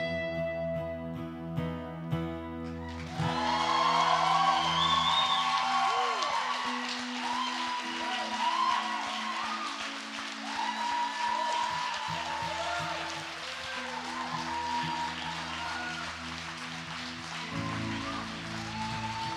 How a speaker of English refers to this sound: Man, if people were clapping like that for me, I'd be like this.